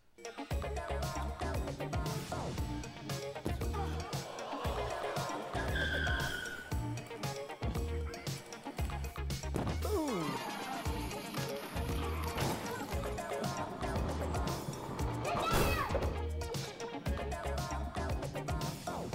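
Small cars driven by little kids rumble and skid around with squealing tires and repeated bumps and crashes, a busy, continuous clatter with scattered voices mixed in.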